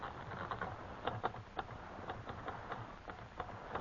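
A typewriter clacks away in an uneven run of sharp key strikes, a few per second, fairly quiet against a steady background hiss, with no one talking, as Mr. Conklin's name is typed.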